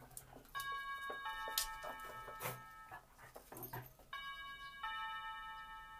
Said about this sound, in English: But let's ring the bell, because you never know.